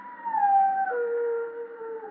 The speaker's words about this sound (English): You mean someone's going to die when a dog howls like that.